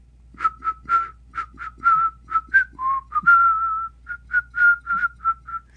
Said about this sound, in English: I have perfect pitch. But sometimes for the fun of it, I make fun of myself by whistling it wrong. But for me to do that, I have to have good pitch.